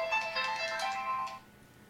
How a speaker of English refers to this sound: Oh, looks like we're getting a very important phone call.